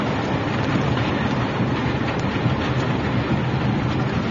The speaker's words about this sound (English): So here's the audio from the dash cam, and you'll hear the dinging. I guess the guy must have taken his seatbelt off or something, but listen. Violent tornado.